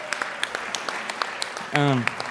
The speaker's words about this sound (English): And 50 people gave their lives to Jesus and now have a personal relationship with Jesus. Yeah, let's clap for that. Come on. Yeah.